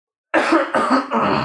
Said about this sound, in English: I had to cough.